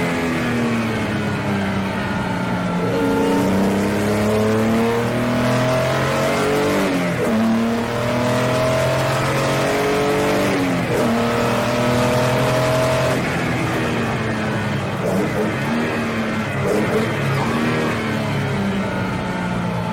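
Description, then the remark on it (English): A vintage Jaguar race car's long-stroke engine revs hard and steadily, its harmonic tones climbing and dropping through gear changes, loud with no voices. “But the noise that engine made is top five best sounding engines I've ever heard in my life.”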